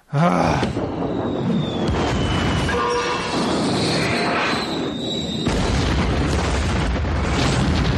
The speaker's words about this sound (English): Oh, hell yeah. That was carpet bombing. Am I right?